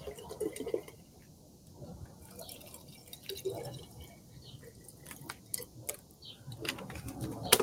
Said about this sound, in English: So the first thing we're going to do is we're going to add water just above the level of the soil in each one of the jars.